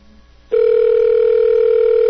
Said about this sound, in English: Nathan's phone's ringing.